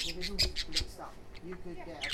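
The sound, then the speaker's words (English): Budgies chirp and squawk in quick, high-pitched bursts, a busy chattering of several short calls over about two seconds, with a low murmur of voices underneath. “They're singing.”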